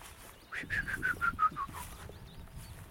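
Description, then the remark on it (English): A willow warbler sings one soft, descending cascade of about seven liquid notes, slightly distant, over a low outdoor background rumble. No one speaks. “Yeah, I can hear distant willow warblers. Might not be able to pick them up. That's a really lovely song.”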